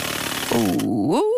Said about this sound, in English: I'm spinning the wheel. All right. I'm going to try win you something goodly. Here we go. 3, 2, 1, and spin.